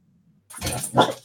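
A dog gives a couple of quick, sharp barks after a brief low whine, loud and clear with no one talking over it.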